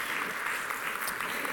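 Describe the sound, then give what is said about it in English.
A crowd claps together in a steady, dense wash of applause at moderate volume with no voices standing out. “And we can clap to that.”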